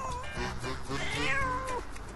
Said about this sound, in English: And this is my little buddy. My croaky neighbor cat that comes and hangs out with me. Right, buddy? Right? I'm sure you'll be hearing from her all day.